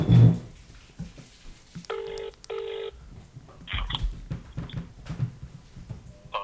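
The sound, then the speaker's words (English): A phone call's ringing tone sounds as two short electronic bursts back to back, followed by a few faint beeps and quiet handling noise, with no one speaking. “Is this ringing?”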